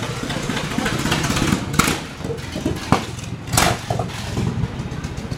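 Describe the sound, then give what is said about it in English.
A loud vintage racing car engine runs with a steady, throbbing low rumble, broken by a few sharp revving bursts, and voices faintly underneath. “To see the entire history of motorsport go past you is quite spectacular.”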